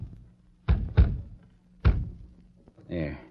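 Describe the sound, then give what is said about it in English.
Three hollow knocks on a wooden room door, two in quick succession and a third after a short pause, fairly loud, followed by a brief murmuring voice. “The door. Let me rap.”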